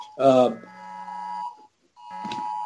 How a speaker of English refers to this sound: Sorry, guys. All kind of, I guess everybody's phone's going off in North Carolina, some kind of alert. But yeah, anybody seeing a 1990 blue Ford F-250 in Asheville, North Carolina?